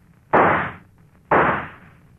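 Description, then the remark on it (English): Two loud gunshots about a second apart, deliberately fired to miss, each a sharp, hard crack that trails off in a short, rumbling decay. No one speaks. “You know I missed on purpose. But next time I won't.”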